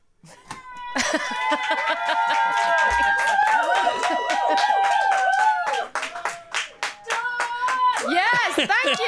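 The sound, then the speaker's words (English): A round of applause in a control room: a small group clapping steadily and loudly for several seconds, with high whoops and cheering voices ringing over the claps throughout. “Has she given enough for a control room round of applause?”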